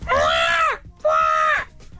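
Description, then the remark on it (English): A person imitates a seagull with two loud, drawn-out squawking cries, each holding a steady pitch before dropping off at the end, separated by a short pause. “I would like you to share with Dublin your impression of a seagull that you've just been doing off air a moment ago.”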